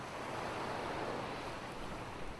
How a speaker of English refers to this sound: Now you're in front of the ocean. You can hear the waves. You can't hear the birds anymore. The sound of the waves is covering everything. It's soothing.